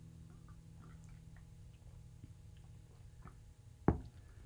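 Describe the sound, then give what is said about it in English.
Faint ticks and clicks, then a single short first sip of Pete's Holiday Blend coffee near the end, a brief wet slurp standing out against the low hum. No one speaks. “Are we ready to take a sip? All right. Yeah, here we go. First sip of our Pete's Holiday Blend.”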